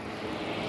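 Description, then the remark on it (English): A helicopter passes overhead above the Metro 102 apartments, its engine and rotors blending into a steady, broad roar that stays even throughout the brief moment, with no voices. “That's a helicopter.”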